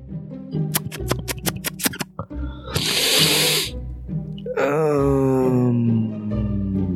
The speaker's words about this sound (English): Red foxes sound exactly like that. I know what's coming.